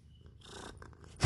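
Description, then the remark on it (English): A pet cat wearing a little bell breathes heavily: soft, raspy airy breaths build gradually, then end in one louder, sharp huffing exhale. No one speaks. “It's breathing heavy for you guys.”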